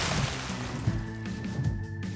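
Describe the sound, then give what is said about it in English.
A boat passing on water: a steady low motor drone with layered hum tones, washed over by broad sloshing water noise and a thin, faint high whine, with no voices. “Oh hey, look! There's a passing boat!”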